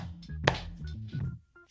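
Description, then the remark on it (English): One sharp, loud hand clap cuts through a low murmur of voices, a single crisp smack that dies away almost at once, made to mark a spot to edit out of a recording. “Damn, let's clap so we can edit that out.”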